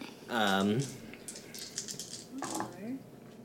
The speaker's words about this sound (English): That sounded like a lot of dice.